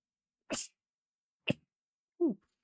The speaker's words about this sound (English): Oh, I gotta sneeze.